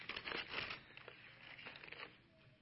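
Gift wrapping paper being torn open from a gift box, a dense run of crinkling, ripping bursts that are loudest at the start and then continue in smaller rustles, with no talking.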